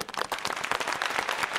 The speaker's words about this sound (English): You know, let's all give a round of applause